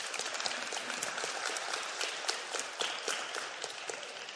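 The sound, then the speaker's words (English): Steady applause from an audience, many hands clapping in a dense, even wash of sharp claps that holds a constant level throughout, with no voices standing out. “Is that my mom that started that clap?”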